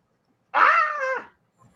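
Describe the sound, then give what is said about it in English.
A puppy lets out a single short, high whimpering whine lasting under a second, fairly clear, with quiet surroundings and no talking. “Yeah, she must be a puppy.”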